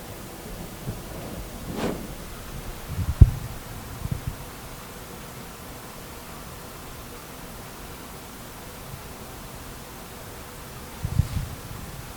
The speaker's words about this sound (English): The sound of the heating system I hear? What's going on? Air conditioner.